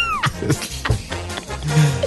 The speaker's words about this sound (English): You know, I knew it was going to do the kitten sound, like, because I was pushing the button, and even when I pressed it, it gave me a nice fright.